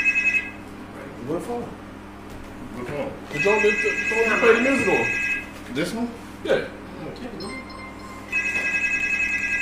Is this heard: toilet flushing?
no